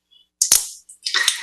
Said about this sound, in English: Okay, so this paper, let's see if we can actually peel back the way I could the other.